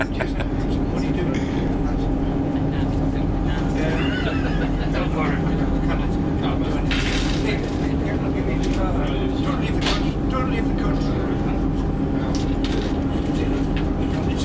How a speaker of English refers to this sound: Rumbling of the train. It's a new... What is it, a diesel train? It is.